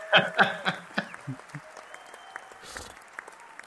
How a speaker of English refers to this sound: Was that a sad trombone or a... No, that was a cheer with higher production values.